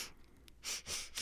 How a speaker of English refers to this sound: Little Adderall there? Little Adderall sniff.